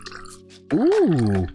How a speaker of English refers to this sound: Okay. Let me get a little sippity dippity. Can't show you what it really is, because guess what? They ain't paying me for it. All right. Pour it up.